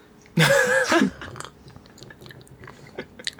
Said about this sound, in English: I'm now going to take my first sip of this posset.